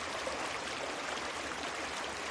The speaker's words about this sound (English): This time of year, it's got a very relaxing tone that quickly lulls me to sleep. So I went down and recorded it for you this past weekend. Tonight's meditation will have the creek in the background, and it'll go on for a while after it's over.